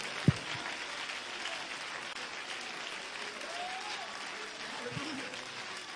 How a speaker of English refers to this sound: Would you clap your hands and give honor unto the Lord?